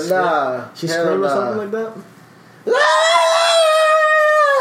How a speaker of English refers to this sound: Bruh, she screamed or something like that.